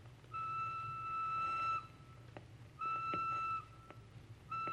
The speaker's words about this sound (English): What is that whistle? Just the train. Where does it go? To Marseille. And from there? Across the border to Spain.